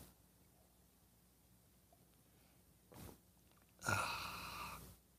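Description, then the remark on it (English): After a quiet pause, a short soft intake is followed by a louder, airy slurp of about a second as someone sips coffee from a cup, with no talking. “Fill it with your favorite liquid. I like coffee. And join me now for the unparalleled pleasure of the dopamine here today, the thing that makes everything better.”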